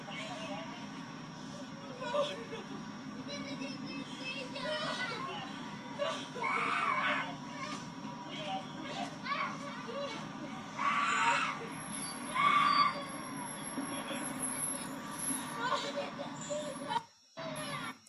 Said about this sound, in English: And that police officer is taking that younger child. Okay, it is hurts the heart to watch this, because the child is screaming, saying, don't let me go with her, and the mother is not letting the child go.